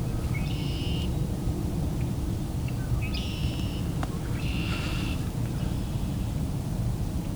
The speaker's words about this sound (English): The red-winged blackbird.